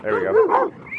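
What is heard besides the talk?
dogs barking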